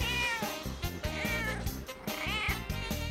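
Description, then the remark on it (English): A cat meows insistently, its drawn-out, wavering cries rising and falling over a dense backdrop of rhythmic music, the calls loud. “Meow one. Jealousy? Petting? Fighting for the couch?”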